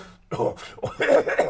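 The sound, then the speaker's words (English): A voice mimics a small, smoking, bat-winged goblin creature's violent coughing fit: a quick series of harsh, raspy hacks in close succession, loud, with no other talking. “And when you say that, the small, smoking, bat-winged goblin creature begins coughing violently.”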